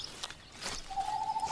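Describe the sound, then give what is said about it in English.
An eastern screech owl gives a steady, monotone trill that starts partway through and holds for under a second, fairly clear against faint outdoor background noise. “That's an eastern screech owl.”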